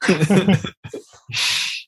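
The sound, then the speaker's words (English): A voice speaks briefly, then a loud, forceful half-second snort of breath sucked in through the nose, sharp, with no talk over it. “Take a hit of this. Sniff this.”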